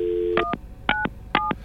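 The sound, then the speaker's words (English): Three short, evenly spaced touch-tone keypad beeps from a telephone being dialed as someone calls back, each a crisp dual-pitched tone, following a brief steady tone at the start. No one speaks. “Don't memorize these beeps, okay?”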